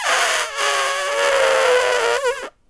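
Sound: voice imitating an elephant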